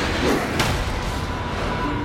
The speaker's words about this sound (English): I've opened the door.